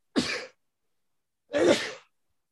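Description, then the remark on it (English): Two sharp, breathy sneezes about a second apart, fairly loud, with silence between and no talking. “Bless you.”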